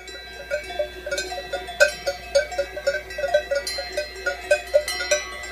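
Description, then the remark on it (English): Many cowbells clank and ring in an uneven, overlapping jangle as a herd of cows wearing cowbells moves about high in the Swiss Alps, the metallic tones steady with no talking. “We're high up in the Swiss Alps, and that sound that you're hearing is a herd of cows wearing cowbells.”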